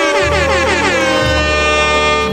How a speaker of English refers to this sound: Hit me with the air horns real quick. Just so that I know that they feel it.